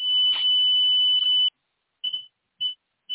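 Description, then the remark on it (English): A sustained high-pitched pure tone, like chakra frequency tones, holds for about a second and a half, then breaks into three short, evenly spaced beeps at the same pitch, loud and clear with no voices. “Those were the chakra frequencies.”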